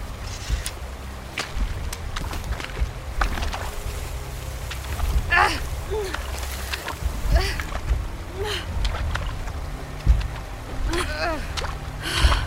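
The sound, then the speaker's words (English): Repeated sloshing and splashing of someone wading slowly through shallow, muddy water to cross it, getting stuck in the mud, each heavy step churning the water, with occasional faint voices in the background. “I'm getting stuck in the mud. Just try and keep your pistol out of the water, okay?”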